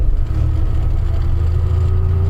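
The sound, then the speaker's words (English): The engine of an old truck roars steadily, revving at about 2,200 RPM, its deep, rumbling drone holding at high revs with a slight rising pitch throughout, loud and continuous with no voices. “Is there a rev limiter on this one? In theory. Well, I think it's about, feels like about 2,200 RPM.”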